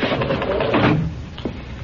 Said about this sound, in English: Come in and shut that door.